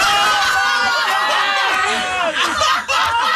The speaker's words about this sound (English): By all accounts, everybody in the office could hear us screaming in this room. And by the way, that is from the video taken in this room. In the My Talk studio. Because we all screamed.